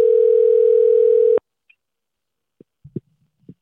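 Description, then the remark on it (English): A steady telephone tone hums for over a second as an outgoing call is placed, then cuts off abruptly, followed by a few faint clicks and soft knocks as the line connects. “So I'm going to call him up.”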